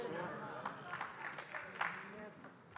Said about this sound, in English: Okay, I got four claps.